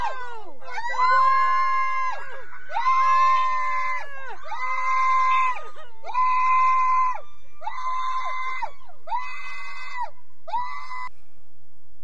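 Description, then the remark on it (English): A woman yells over and over to scare off a black bear, seven loud, high-pitched, drawn-out shouts in a steady rhythm with brief pauses between them, with no other voices. “If I was a dude in the house and a lady was yelling like that repeatedly, I'd be running right beside the bear.”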